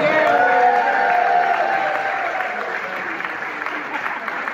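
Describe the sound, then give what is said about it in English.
A comedy club audience applauds steadily as a comic from the San Francisco Bay Area is introduced, dense clapping with a few scattered whoops, the ovation holding strong before easing slightly toward the end. “Give it up for Jacob Parnell.”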